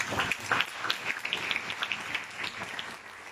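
An audience claps together in a dense, steady patter of many hands, loud at first and gradually thinning and softening toward the end. No one speaks over it.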